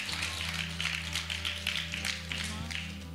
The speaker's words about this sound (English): Can we give a clap for those people who made that decision?